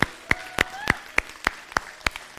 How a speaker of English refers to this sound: Let's give a hand clap for those people that have prayed that prayer.